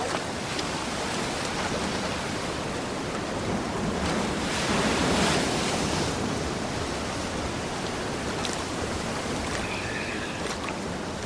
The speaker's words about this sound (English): It's going to be hard to hear anything over the waves.